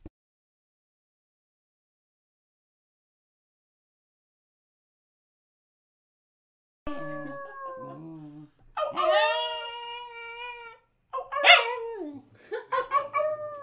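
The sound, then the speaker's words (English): After about seven seconds of silence, a dog being picked up lets out a few short howls with wavering pitch, rising into yips and whimpery cries toward the end. “He did the little howl.”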